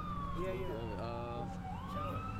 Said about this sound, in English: Now what you hear in the background is a massive collision. A two-car collision that's not even in Councilman Jones' ward.